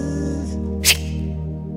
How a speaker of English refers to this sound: I unzip it and my beard trimmer is running. The little trimmer part has come off, but that little thing, it's going around about this loud.